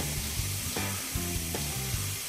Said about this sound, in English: I think he is in the shower. Wait a minute. I think I hear the shower running. He's using all my hot water again.